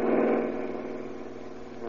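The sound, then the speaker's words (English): A car with only one man in it drives past without stopping, its engine a steady, fairly loud rumble that eases off slightly as it moves away, with no voices. “Here comes a car with only one guy in it.”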